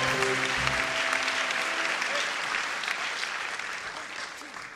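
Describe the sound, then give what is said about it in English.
Sustained applause from a sizable audience on the LiveWire show, a dense wash of clapping that stays loud and steady before tapering slightly toward the end, with a few brief tonal notes underneath at the start. “Another round of applause, please, one more time on LiveWire.”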